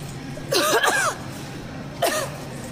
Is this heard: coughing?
yes